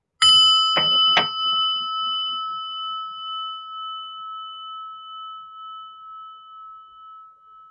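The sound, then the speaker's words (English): A meditation bell is struck, a brief clattery onset giving way to a clear, pure tone that rings on steadily and slowly fades over several seconds, with no voices. “And the bell.”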